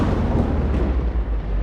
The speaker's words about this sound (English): Cue convenient thunder and lightning.